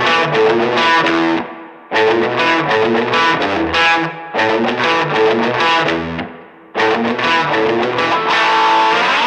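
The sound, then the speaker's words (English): A loud, distorted Fender electric guitar plays thick, sustained chord phrases, with brief dips between the phrases. No one talks over it. “That's a Fender, my friend.”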